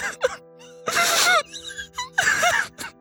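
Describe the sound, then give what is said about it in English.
A voice imitates a girl sobbing: short whimpering catches and two long, loud, breathy sobs with wavering, quivering pitch, separated by shaky little gasps. “So you see this girl, as you get closer, you kind of hear the sobbing a little more in here.”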